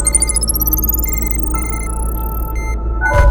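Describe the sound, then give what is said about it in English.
A bracelet timer beeps: a bright electronic tone pulses rapidly while sliding steadily upward in pitch for a couple of seconds, then cuts off, followed by a brief burst of noise over a steady low hum. “Just the timer on my bracelet letting me know I'm good.”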